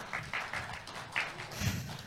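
A church audience applauds after an interview, a soft, dense patter of many hands clapping that holds steady for about two seconds, with a few sharper claps standing out and no voices.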